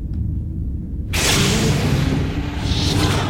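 A low steady rumble, then a sudden loud airy whoosh bursts in and holds as a broad hissing rush, like a sci-fi sliding door swooshing shut, as a door in the Admiral's Club closes. No voices are heard.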